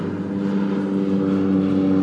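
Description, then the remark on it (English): A single-engine Otter floatplane drones past, its propeller engine a steady, loud hum with a slight rise in intensity and no voices over it. “That's an otter, single otter, my mistake.”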